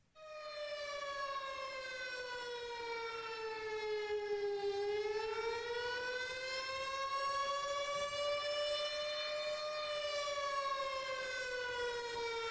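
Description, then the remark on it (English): A tornado warning civil defense siren in Kansas City wails continuously and loudly, its rich droning tone sagging slowly in pitch and then climbing back up, with no voices over it. “But, like, our first few months in Kansas City, we started hearing this siren go off. It sounded kind of like this.”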